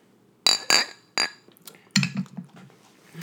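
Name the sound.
beer glasses clinking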